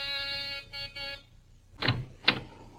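An apartment's buzzing doorbell in a cheap village flat, pressed at about 9 p.m., rings with one long harsh buzz and then two short ones, followed by two dull thuds. Nobody speaks.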